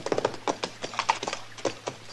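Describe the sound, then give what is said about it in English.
A horse's hooves clip-clop at an easy walking pace, a steady run of sharp, hollow knocks with no voices over them; it is Mr. Dillon's horse, which has a loose shoe. “Hey, that horse of yours has got a loose shoe, ain't he, Mr.”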